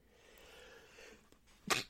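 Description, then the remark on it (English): A single sharp sneeze bursts out near the end, loud, after a stretch of quiet low background murmur. “Bless you again.”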